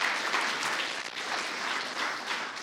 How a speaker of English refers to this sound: If you like celebrating, why don't you give God a round of applause? Because that's what he wants us to do.